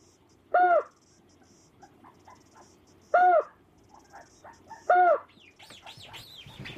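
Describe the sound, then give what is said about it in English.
Recorded calls of adult white-faced storm petrels, broadcast every night through a loudspeaker sound system in a new colony on the southwest cliffs of Mana Island: three loud, harsh, throaty calls a couple of seconds apart, with faint chirps between them, then higher sweeping whistles at the end. “Every night, the sound system in the new white-faced storm petrel colony on the southwest cliffs of Mana Island broadcasts the sounds of adult birds.”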